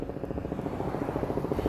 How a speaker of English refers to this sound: And there's a helicopter right over me. Usually it's very quiet in this neighborhood, but you see how the enemy does.